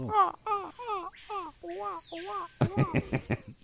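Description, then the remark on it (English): Rainforest ambience: a run of repeated, warbling bird calls in quick succession over a steady high insect-like drone, ending in a burst of sharper, choppier chirps. “Forget the rainforest noise.”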